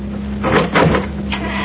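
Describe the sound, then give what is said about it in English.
A door handle is jiggled and the latch clicks, followed by the creak and knock of a door swinging open, with a steady low hum underneath and no voices. “Try the door.”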